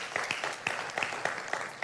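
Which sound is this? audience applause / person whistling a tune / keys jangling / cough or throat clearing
audience applause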